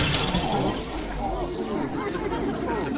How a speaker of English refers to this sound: lurched forward, and with a cry of, "I think you'll find," he fell and demolished the buffet table.